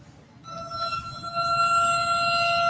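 A siren starts up abruptly and holds a loud, steady, multi-toned wail that keeps sounding without pause over a low rumbling background, on a breezy March day with light snow falling.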